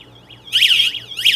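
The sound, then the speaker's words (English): A loud, piercing electronic alarm buzzer on a Wi-Fi-connected board being tested wails in repeating high-pitched sweeps, rising and falling quickly. It starts softer, then blares, until a button is pressed; no one talks. “Woo, that's loud, sorry. I have the alarm going off, and then it'll wait for me to press the boot button there”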